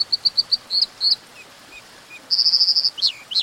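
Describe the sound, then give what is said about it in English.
An American dipper sings a series of high, bright repeated notes, then a rapid buzzy trill and a few sharp upswept whistles, clear over a soft, steady background rush. “As the river ran free again, salmon from the Pacific were able to spawn upstream for the first time in 100 years, having a dramatic impact on American dippers, lively little riverside birds.”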